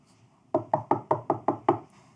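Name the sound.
knocking on a door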